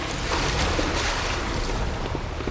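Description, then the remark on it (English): A steady wash of gray sea waves churning and hissing without pause, a dense roar of water with faint wind noise mixed in and no voices. “Hoisting ourselves over the stone landing of the stairs, we clambered upwards, the sound of an endless gray sea birthing an abomination of sour smiles and silent bells right behind us.”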